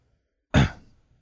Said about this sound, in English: Is there somebody coughing here? Is someone clearing your throat?